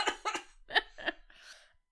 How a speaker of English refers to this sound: Excuse me. Let's get our coughs out and then I can cut it all at once.